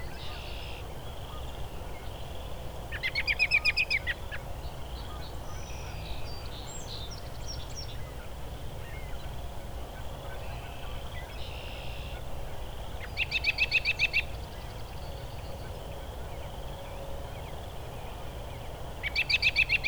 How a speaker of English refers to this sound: I can hear some Canadian geese too. Well, Canada geese, but this robin's not singing, it's just making a lot of calls, vocalizations.